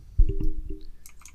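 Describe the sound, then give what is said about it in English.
Several quick clicks and soft thuds from a clicky computer keyboard. A short burst of keystrokes is followed by lighter, brighter taps, with no talking. “You guys are going to hear my clicky keyboards again.”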